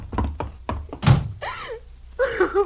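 A series of hollow thunks ends in a heavier thud as a door is shut and locked, followed by two short, strained vocal cries.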